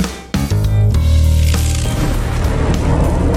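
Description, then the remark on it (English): A short lightning-round sting for a news show's quick hits: a sudden loud crash-like hit launches a heavy, sustained low tonal roar with bright crackling texture, punctuated by a second accent before fading slightly. No voices. “When you hear that sound, it's the lightning round for the quick hits after the big news bits.”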